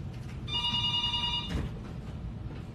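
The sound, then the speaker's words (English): A telephone rings with an incoming call, a bright, steady electronic trill lasting about a second, clear over a low background murmur, then cuts off abruptly. “I'm getting a phone call now.”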